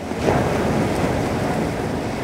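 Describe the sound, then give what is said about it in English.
A ship's hull smashes and grinds through vast, consolidated sea ice in a steady, dense roar of crunching and rushing water. Chunks the size of couches and cars break off and turn over in the water. It stays loud and unbroken throughout, with no voices. “So what you're hearing there is the sound of the hull making contact with the ice and these chunks the size of couches and cars breaking off and turning over in the water.”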